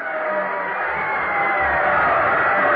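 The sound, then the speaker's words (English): A football stadium crowd at a Riverdale game cheers after Riverdale comes from behind for a touchdown to lead 7-6, in a steady, loud, continuous roar of many voices that holds at the same level for the whole moment, with no single voice standing out. “Listen to that crowd.”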